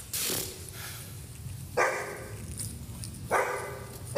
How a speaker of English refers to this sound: Yeah, speaking of loud, why don't you turn down that dog of yours? All it does is bark all day at nothing.